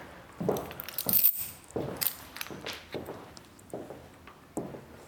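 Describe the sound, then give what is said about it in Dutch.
Keys jangle in a person's hands in short metallic bursts, a couple of brighter jingles standing out, mixed with soft footsteps as the person walks into a living room. No one speaks. “Met sleutels in mijn handen.”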